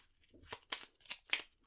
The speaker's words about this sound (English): So I'm going to shuffle these cards and I'm just going to pull out three randomly.